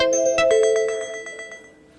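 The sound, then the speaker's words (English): Someone's phone goes off during a Bible talk: a ringtone plays a bright, melodic electronic chime with a quick run of pulsing tones, fairly loud, then fades out over about two seconds with no one speaking. “Is it someone's phone?”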